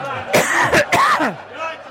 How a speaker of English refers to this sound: … coughing his guts up.